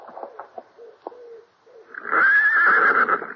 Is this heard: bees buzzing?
no